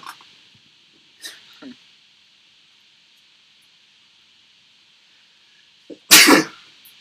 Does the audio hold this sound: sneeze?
yes